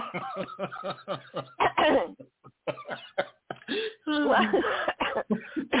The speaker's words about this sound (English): I'm cough because I'm laughing.